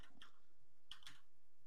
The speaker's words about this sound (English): The typing's going slower.